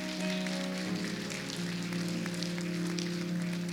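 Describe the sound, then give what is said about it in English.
A church audience claps as an offering to God during a morning service, a steady, dense, crackling wash of applause that fills the whole stretch, with held low organ-like tones humming underneath and no voices. “Yeah, give God a clap offering this morning.”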